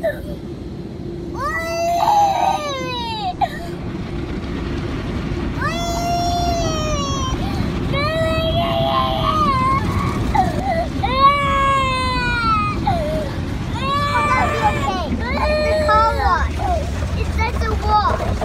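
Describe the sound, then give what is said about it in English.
A terrified toddler girl cries in repeated high, wavering wails, loud, as a young boy of about 3 or 4 holds her hand, over a constant low rumble and rushing spray of machinery in a drive-through car wash. “She's got tears in her eyes.”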